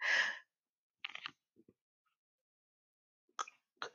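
A breathy burst that sounds like a yawn mixed with a cough. It's loud at first, followed by a few quieter throaty fragments and short breaths, with no talking.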